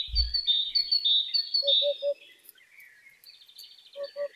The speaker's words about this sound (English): Do you want to hear from the hoopo bird? We can't hear from the groundsman, but we can hear the song of the hoopo bird.